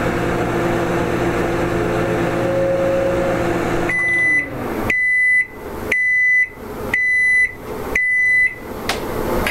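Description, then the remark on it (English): A microwave oven's hum cuts off after heating a cup for 20 seconds, followed by five evenly spaced, loud electronic beeps signaling it's done, each short and sharp with a steady rhythm, with no talking. “I just got beeps letting me know.”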